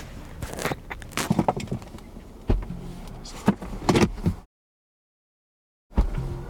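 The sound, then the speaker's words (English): Mechanical whirring and a series of thuds and clunks as car doors power themselves shut, followed by a brief stretch of silence and one more clunk. “Fortunately, though, neither of us have to close our own doors.”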